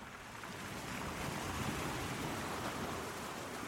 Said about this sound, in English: All I can hear is the gentle sway of the wind. Small waves are rolling onto the beach.